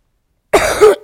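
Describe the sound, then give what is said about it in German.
A single loud cough from a person who has been coughing repeatedly bursts out after a moment of silence, a short rough hack with a second push at the end, and no talking around it. “Digga, ich huste hier die ganze Zeit.”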